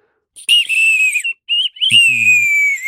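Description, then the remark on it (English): A shrill, high nightingale bird-call whistle, filled a quarter full with water, blown in three bursts: a long tone, a short one, then a longer one whose steady pitch wavers slightly and slowly sinks, with a brief low murmur underneath. “So, and the instructions are, fill quarter full with water, blow gently and firmly, obtain trills by vibrating tongue.”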